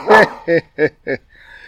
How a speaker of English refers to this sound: Hi, Mitzi. That's our guard dog. We're outside.